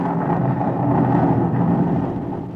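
thunder

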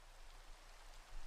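rain falling

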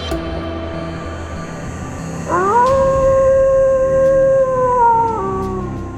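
wolf-like howl

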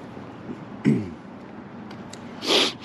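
throat clearing

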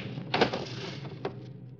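drawer being opened

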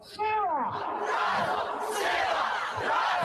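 crowd chanting

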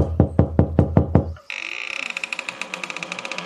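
knocking on a door

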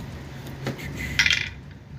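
dice being rolled

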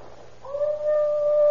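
dog howling

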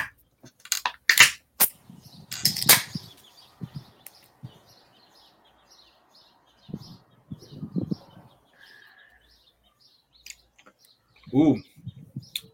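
sipping beer

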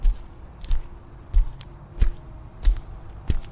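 footsteps walking

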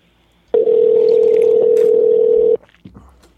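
telephone dial tone

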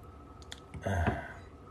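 drinking water

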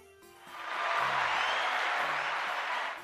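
crowd cheering

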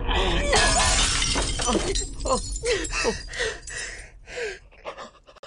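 mirror glass shattering

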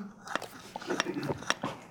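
loud swallowing

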